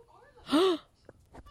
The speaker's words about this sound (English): Why are you gasping? Because I just came up with the cosplay for SuperCon Saturday.